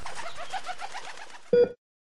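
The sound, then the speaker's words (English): Several pigeons on rooftops with pigeon coops coo in soft, overlapping rolling murmurs, ending with a brief louder burst before the sound cuts off into silence. “The free ones that landed and peered down from the ledge, searching for distant crumbs, or the gangs of pigeons and coops that dotted those roofs in those days.”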